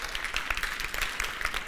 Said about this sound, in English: So, yeah, you can give the Lord a clap.